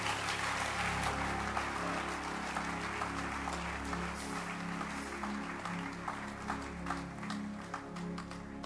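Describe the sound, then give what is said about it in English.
A church audience claps continuously during a service, a dense steady patter of many hands, with sustained low musical tones droning underneath throughout. “While you clap your hands again”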